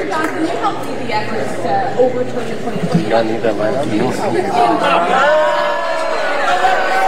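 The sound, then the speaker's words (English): A crowd of Johnson's fellow Republicans booing and shouting over one another at a question about his vote not to certify President Biden's victory, a dense, loud wall of overlapping voices that swells into sustained jeering toward the end. “Johnson's fellow Republicans booing and shouting.”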